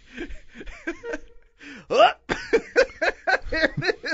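hiccups

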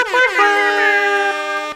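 air horn sound effect

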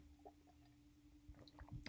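sipping water

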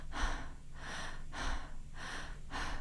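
deep rhythmic breathing

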